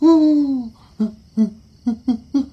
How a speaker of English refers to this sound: A big, brown, feathered thing with a yellow beak sat on the branch outside. That's not a ghost. It's just a big owl sitting in the tree outside my room.